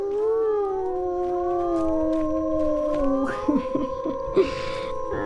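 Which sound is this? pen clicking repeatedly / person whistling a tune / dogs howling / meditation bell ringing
dogs howling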